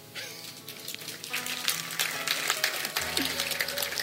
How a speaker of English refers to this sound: Somebody felt like clapping, right?